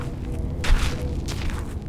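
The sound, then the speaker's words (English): Trash gets kicked across the dry, sandy, waterless bed of the Santa Cruz River in downtown Tucson: two short, scuffing, rattly bursts about half a second apart, set against a steady low rumble, with no voices. “That's me kicking some trash.”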